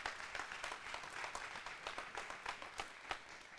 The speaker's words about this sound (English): Hey, y'all give our sound booth a great big hand clap for all the awesome work that they do.